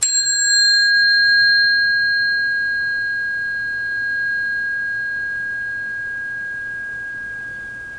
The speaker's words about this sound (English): Now, hear the bell. Don't call it a bell. But just hear sound. Don't name it.